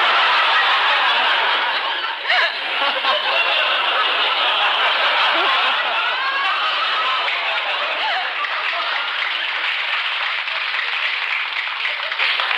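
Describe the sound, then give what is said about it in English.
A studio audience applauds steadily for several seconds, the dense clapping mixed with scattered laughter and low groans that fade as the applause carries on. “I'm glad that the applause finally outweighed the groaning, huh?”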